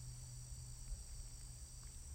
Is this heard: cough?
no